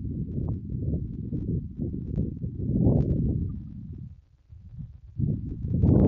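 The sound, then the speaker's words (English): Wind buffets a Bluetooth-connected microphone on a windy day in a steady low rumble, swelling and thumping in uneven gusts, dipping briefly near the end before surging louder again. No one speaks. “I'm pretty sure it is, but it's kind of windy.”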